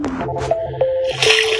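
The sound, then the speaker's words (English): Synthetic watery video game sound effects while fishing: a few drippy splashes and squishy bursts mixed with short electronic tones, steady and fairly loud, with no one talking. “So you'll be able to hear the water.”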